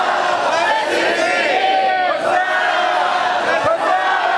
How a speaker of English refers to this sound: Okay, stand up. Here we go. Stand up. Let's try it again. Now watch closely because I might mix it up, okay? Jesus come in Jerusalem and the crowds yelled, Hosanna!